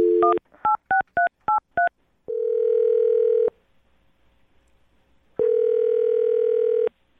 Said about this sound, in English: I'll dial the phone number and get him on the phone and find out if something did go wrong on your date, okay?